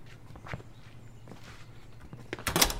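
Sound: footsteps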